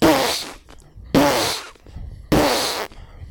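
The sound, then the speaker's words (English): Three forceful, evenly spaced breaths pushed out in sharp bursts during a bridge breath exercise, a belly breath driven by the muscles. Each is about half a second long, loud and hissy with a slightly buzzing, voiced edge, separated by short quiet gaps. “That's the bridge breath.”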